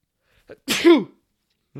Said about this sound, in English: Third sneeze of the third podcast. Sneeze of the podcast. Let's go. It's always me.